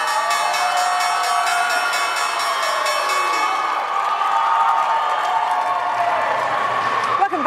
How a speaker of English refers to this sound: Move from the New York Stock Exchange, where the ceiling is about to fly off, quite frankly. As you can hear it, the screaming and shouting behind me, Revolve, the online e-retailer, is listing today, and there are a lot of very happy people